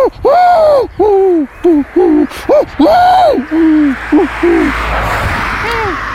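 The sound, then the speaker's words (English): A human voice mimics the coo of an angry pigeon, a run of about ten short, rising-and-falling hooting calls in quick succession, loud with no other sounds around it. “So if a pigeon was angry, would it go...”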